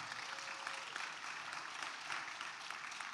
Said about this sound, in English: Well, he even got applause. He got applause. That's amazing.